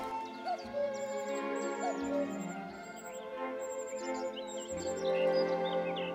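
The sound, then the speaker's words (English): Small birds chirp at a reed warblers' nest where a young cuckoo is fed: quick, high, thin calls that repeat throughout, rising and falling in short bursts over a steady, droning tonal background. “Although the cuckoo is by now much bigger than the reed warblers, they still treat it as if it's one of their own nestlings.”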